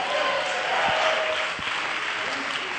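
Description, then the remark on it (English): An audience claps steadily, a dense wash of many hands blending into a continuous, even roar with no pauses, holding at a constant level throughout. “I can clap anyway.”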